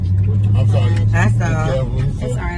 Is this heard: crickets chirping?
no